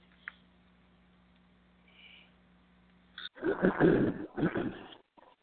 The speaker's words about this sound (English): Now, pardon me, I had to clear my throat. I do apologize.